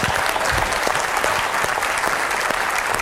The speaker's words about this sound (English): Well, I think he needs an extra round of applause for having spoken so quickly and not mispronouncing one word.